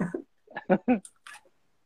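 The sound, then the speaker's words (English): A couple of short, crisp crunches as someone bites into hot battered fried banana, following a few brief murmured vocal sounds. “I could hear that crunch.”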